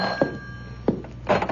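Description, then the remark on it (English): A telephone bell rings in short, jangling bursts with a steady metallic tone underneath, moderately loud, with no voices present; it is a call from the doctor. “Why doesn't he phone?”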